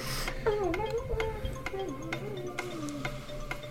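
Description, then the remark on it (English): A game show countdown clock ticks steadily, about twice a second, with sharp, evenly spaced clicks over a low background hum and a faint wavering voice-like tone underneath. “Start the clock.”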